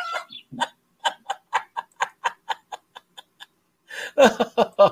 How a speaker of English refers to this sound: as he falls down again and again. It almost sounds like he's either being taken out by a chicken, lands on a chicken, or it sounds like a chicken when he hits his butt.